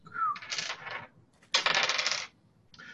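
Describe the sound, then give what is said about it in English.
A six-sided die is rolled for a sanity check in a tabletop role-playing game, rattling and tumbling across a hard tabletop in two clattering rolls, each lasting under a second, with a third roll just beginning at the end. No voices are heard. “1d6.”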